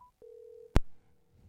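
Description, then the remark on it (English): A brief high beep, then a steady mid-pitched telephone tone lasting about half a second as a radio host dials a co-host, cut off by a sharp click or thump, with faint line noise after. “The phone is dialing.”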